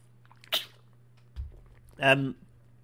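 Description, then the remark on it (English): A short slurping sip of water, then a soft low thud like a cup being set down, followed by a brief voiced exhale or throat sound. “Actually, I'm going to have some water before it catastrophically disintegrates.”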